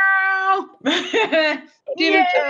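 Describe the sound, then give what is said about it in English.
A person's voice mimics a cat, giving a few drawn-out, wavering meows in quick succession, loud, with a brief pause before the last one. “Dinner time! Meow! Meowie wowie.”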